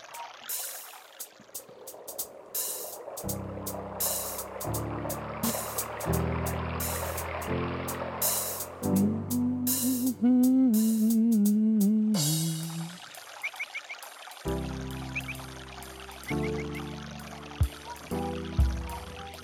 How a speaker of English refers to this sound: When you close your eyes, you could hear him rustling through the river.